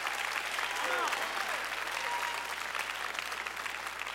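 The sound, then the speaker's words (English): A church audience claps their hands to give God praise, a steady, dense wash of many hands applauding for several seconds, with faint cheering voices rising through the noise. “And if I got a church that believes it, clap your hands and give God praise right now.”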